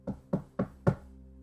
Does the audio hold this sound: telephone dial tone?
no